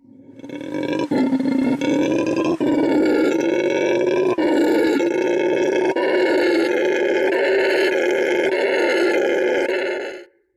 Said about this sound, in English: There's another animal in the wild, and he is known as the howler monkey. And I want you to listen to this little monkey for about 5 or 10 seconds. Check it out.